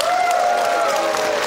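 audience applause and cheering

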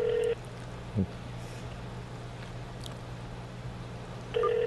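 phone call dialing tones

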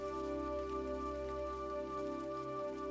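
rain falling

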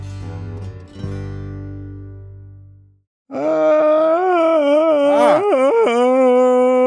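loud drawn-out yawn

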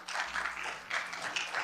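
audience applause

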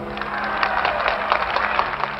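convention audience applause

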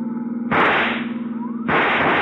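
rifle shot

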